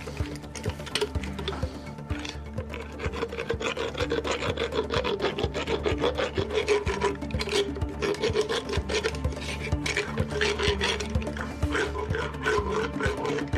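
A horse dentist's rasp files down a horse's teeth in quick, repeated rough strokes, a continuous gritty scraping with a rhythmic back-and-forth pulse and a low steady hum beneath, moderately loud throughout with no talking.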